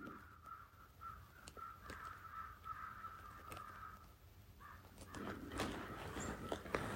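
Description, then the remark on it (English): Several crows caw repeatedly in overlapping bursts, a busy outdoor chorus of harsh calls, with other birds and faint ambient noise in the background. “Join in the crow's chorus with the ancient sound current of the Heart Sutra.”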